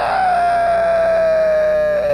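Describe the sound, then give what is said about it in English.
A voice imitates a tree set on fire with oil screaming as it burns: one loud, sustained, high wail that holds steady for about two seconds, sliding slightly lower toward the end. No talking accompanies it. “But unlike last time, which was silent, this tree screams.”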